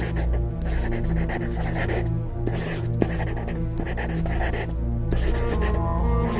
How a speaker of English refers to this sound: So the sound of a pencil on paper there.